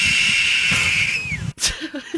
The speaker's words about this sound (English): Whoa, was that a... That was a hawk. That was a very intense hawk there.